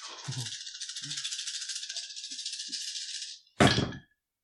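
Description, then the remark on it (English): A bunch of panic dice for a tabletop game rattle steadily for about three seconds, as if shaken in a cup or hand, then clatter out in one short, loud burst; the roll gives two successes. Nobody speaks. “It's about to have to roll a bunch of panic dice, though.”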